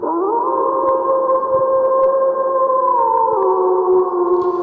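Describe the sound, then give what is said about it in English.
A person howls like a wolf in one long, loud, sustained note that swoops up at the start, holds steady for several seconds, then dips slightly near the end. “And Mike Zabatakis, this howl is for you.”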